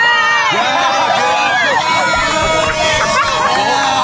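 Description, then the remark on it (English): A packed airplane cabin of passengers loudly cheering and shouting encouragement, egging a woman on, many overlapping voices forming a dense, continuous roar of excited babble for the whole stretch. “The whole plane, everybody's cheering, egging her on.”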